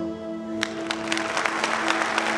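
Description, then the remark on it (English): Audience applause, a steady wash of many hands clapping with sharper individual claps popping out, over a faint low steady hum. No one speaks. “There is applause.”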